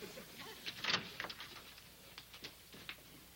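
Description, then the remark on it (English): A handful of light, sharp knocks on a door, irregularly spaced and fairly faint, with no voices over them. “There's somebody at the door”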